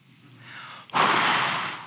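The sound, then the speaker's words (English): A person demonstrates breathing, a soft rush of air building up before a forceful breath is blown out and held for about a second. No one speaks. “And before he ascended, he spoke with his disciples and he breathes on them.”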